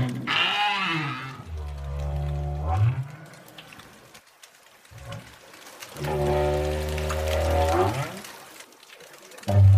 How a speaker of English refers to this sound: Those were southern right whales having a good old chat about, well, something. We're not exactly sure what.